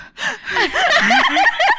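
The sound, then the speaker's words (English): A voice acts out quick, heavy panting, a rapid run of breathy huffs and gasps lasting a couple of seconds, fairly loud, with no words spoken, imitating a man breathing hard while running back and forth, drilling and shoving things as he worked fast. “And he was breathing. He was literally going.”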